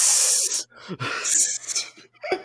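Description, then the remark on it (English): A woman imitates a snake in a film scene, letting out a few sharp, breathy hisses of high, airy noise separated by short pauses and brief low vocal sounds. “Yeah, she hisses.”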